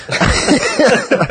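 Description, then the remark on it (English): A person coughs a few times, with short, rough, husky bursts running together over about a second and a half, with no words spoken. “But actually, if you hear me having a little bit of a cough today, that's part of the reason why.”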